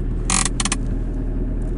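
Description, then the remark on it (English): A car handbrake is pulled up in two quick, bright ratcheting bursts, heard over the steady low rumble of an idling engine. “Listen to this handbrake.”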